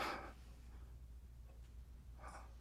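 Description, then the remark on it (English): Two rough, airy breaths from a man about two seconds apart, a heavy exhale at the start and another near the end, quiet against a low steady hum, with no talking. “That's him breathing.”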